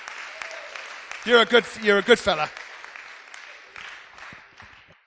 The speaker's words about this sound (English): Bless you, mate. Come on, give him a bit of a cheer.